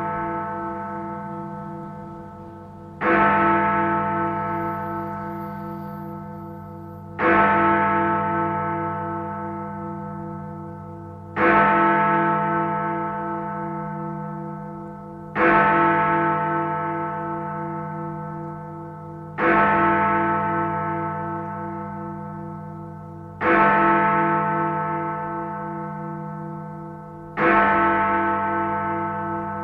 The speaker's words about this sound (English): Did I have to download an extra Big Ben chimes this morning? Of course I did.